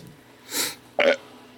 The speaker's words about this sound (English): Burp brought to you by Sam Adams Holiday White Ale. It's citrusy and hazy.